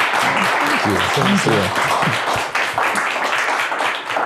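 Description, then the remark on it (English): A steady round of applause from a crowd, a dense, even wash of many hands clapping throughout, with a voice briefly talking over it near the start. “Yeah. All right, so give another hand, a round of applause for...”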